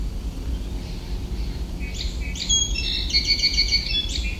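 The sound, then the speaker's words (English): Two American robins calling back and forth in an argument, in quick, agitated bursts over a steady low outdoor rumble; the sharp, high calls start after a couple of seconds of quiet. “So it was an argument between two robins and then a song sparrow.”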